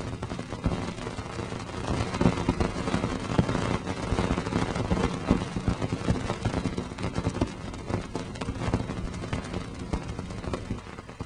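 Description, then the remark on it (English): Spacecraft recording of Cassini's outgoing crossing of Saturn's ring plane as it passes through Saturn's rings: a dense, steady, crackling roar packed with rapid irregular clicks and pops, fairly loud and unbroken for the whole stretch, with no voices. “Here's the outgoing, going ring plane crossing.”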